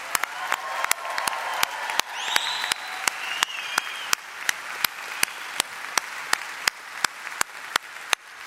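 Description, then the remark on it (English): Sustained audience applause in a building, given to honor a couple, fills the whole stretch, a dense steady wash of clapping with sharp, regular claps popping out about twice a second, plus a brief high whistle or cheer partway through. “Come on, everybody, let's really give them our appreciation.”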